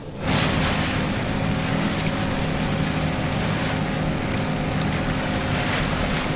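A motorboat engine drones steadily and loudly over harbor water, a continuous rumbling hum with splashing wash and wind noise, starting abruptly and holding throughout with no one speaking.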